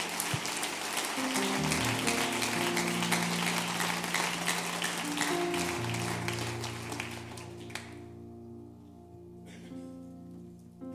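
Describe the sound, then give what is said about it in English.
A church audience at a morning service claps steadily for several seconds over sustained organ chords, then the applause fades out, leaving the organ ringing on its own. “Could you give them a hand clap this morning?”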